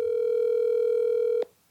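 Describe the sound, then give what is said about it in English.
A steady, loud telephone dial tone from calling a bar holds a single unwavering pitch for about a second and a half, then cuts off abruptly into near silence. No voices are present. “We spent weeks reaching out on social media, calling the bar, and playing phone tag with various bartenders to see if we could schedule some interviews ahead of time.”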